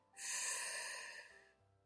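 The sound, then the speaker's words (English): A single long, audible deep inhalation drawn in steadily through the mouth during a guided breathing exercise, fairly loud, lasting over a second before tapering off; no talking. “Now take a deep breath in.”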